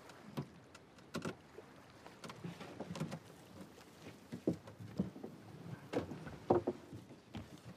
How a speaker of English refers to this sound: When this net is thrown into the sea, what happens,